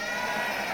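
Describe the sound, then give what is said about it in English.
An audience imitating sheep bleats all at once on a count of three, a brief, dense chorus of overlapping wavering voices held at a steady level with no talking. “On the count of three, I want you to bleat like sheep.”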